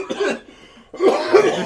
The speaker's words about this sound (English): Hold on, wait. That's cough number two for you.